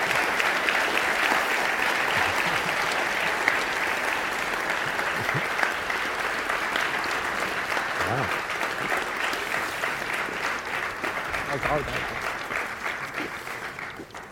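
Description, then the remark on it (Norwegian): Sustained audience applause for Tor Godtås, a dense, steady patter of many hands clapping at an even level for the whole stretch, easing slightly toward the end, with no voices standing out. “Nå må jeg gi en stor applaus til mannen som dere straks finner bak det som igjen, og den stavlen med bøker han tok med seg, nemlig Tor Godtås.”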